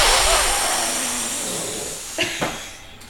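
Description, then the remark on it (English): A long, forceful breathy rush of air as someone blows hard to blow a house down, slowly fading, followed by two brief sharp bursts of sound near the end. “You mean blow it down?”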